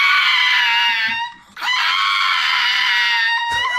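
A pug dog lets out shrill, human-like shrieks instead of barks: two long, loud, high-pitched wails separated by a brief breath, then a short sharp yelp at the end.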